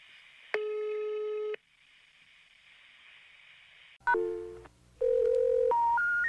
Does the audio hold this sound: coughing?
no